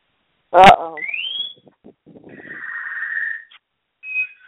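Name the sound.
pet birds chirping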